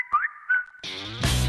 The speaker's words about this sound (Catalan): Ei, ja sabeu, si us sona a WhatsApp, com ara, per exemple, que ha sonat, doncs no l'agafeu si esteu conduint.